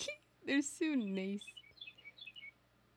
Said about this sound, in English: The weather's gonna be good, is if the birds are chirping. It's gonna be a bright, sunshiny day. I'm just gonna listen to these birds.